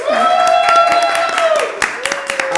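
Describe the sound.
An audience cheers and claps: a sustained high-pitched whoop rises over scattered, irregular hand claps, with a few more voices joining in before the clapping continues loosely.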